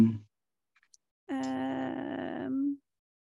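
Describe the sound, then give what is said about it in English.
A voice imitates a big, deep snore of a sleeping character with one long, drawn-out, groaning rumble that rises slightly at the end, fairly loud after a brief pause. “He's by now he's doing like big deep snores.”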